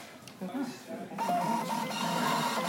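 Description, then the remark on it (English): A cash register prints a receipt with a steady, buzzing whir that starts about halfway through and runs to the end, as volunteers setting up tables of books learn to use the register and scan items. Voices murmur underneath. “They learn how to use the cash registers.”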